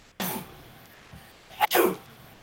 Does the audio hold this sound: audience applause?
no